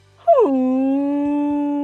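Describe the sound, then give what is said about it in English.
A person imitates a whale call with one long, loud vocal moan that swoops downward in pitch, then holds a steady, droning tone to the end. “Gotta do the whale noises.”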